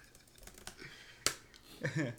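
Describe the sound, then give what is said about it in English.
Scattered clicks of typing on a computer keyboard as someone checks facts, a handful of quiet taps with one sharper keystroke, followed by a brief burst of someone talking near the end. “You can hear the pitter patter of the keyboard.”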